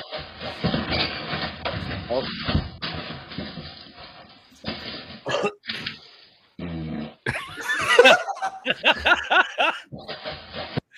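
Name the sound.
fart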